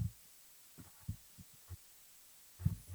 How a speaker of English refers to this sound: It's a record that's done? It's just going vroom.